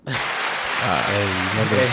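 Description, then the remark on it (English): A clapping sound effect plays as a dense, steady wash of many hands applauding, loud throughout the two seconds, with a voice talking over the second half. “Do the clapping one.”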